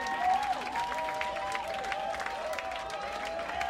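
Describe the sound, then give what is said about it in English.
An audience of about 400 people applauds steadily after a live set in a packed room at the Rock and Roll Hotel in Washington, D.C., dense clapping spread throughout, while sustained, gliding electronic tones hum beneath the applause. “If people aren't clapping a lot, it's because there's just no room to move your arms.”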